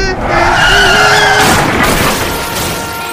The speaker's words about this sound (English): Now, just pull on in. Kid, you're gonna stop. Hit the brakes, damn it.